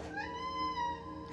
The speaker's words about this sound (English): What was that sound? It wasn't even like a cat meowing, it was just this ghostly creature screaming.